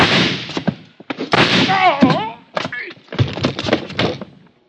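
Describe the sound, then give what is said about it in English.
A chaotic struggle in a room: several sharp bangs like gunshots burst out among heavy thuds and scuffling, with a voice crying out partway through, as a man is shot in the side. “sitting on the floor, was Carson staring stupidly down at the red bullet hole in his side”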